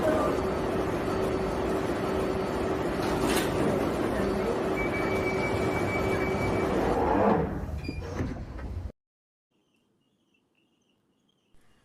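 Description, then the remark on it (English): A loud underground train rumbles and roars with a steady electric whine, then quickly fades as it pulls away from the platform, leaving near silence. “Mind the gap between the train and the platform. Please stand clear of the discussion doors.”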